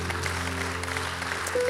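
Steady audience applause, a dense wash of many hands clapping at an even level, with a low sustained hum running underneath.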